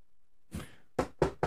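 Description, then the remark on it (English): Three firm knocks in a quick, even rhythm, fairly loud, preceded by a brief breathy rush of noise. No one speaks. “Can they hear that knocking?”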